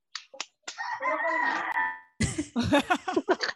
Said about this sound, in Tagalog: Kanino ang manok?